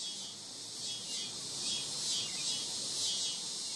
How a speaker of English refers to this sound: The cicada song is not at all subtle. It's raspy, even rude.